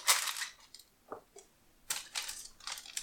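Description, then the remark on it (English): Crisp, papery crinkling and rustling in a few short bursts as a sheet of parchment paper is handled and laid on top of a layer of brownies in a tub, fairly quiet, with no talking. “We take our next piece of parchment paper, and that can go on top.”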